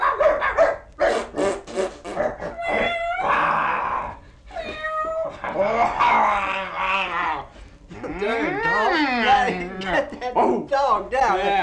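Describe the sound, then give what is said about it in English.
A chorus of sled dogs yelps, whines and howls almost nonstop, the cries rising and falling in wavering pitch, loud, with several voices overlapping. “Yes, you hear that? Yeah, I guess we better get the dog.”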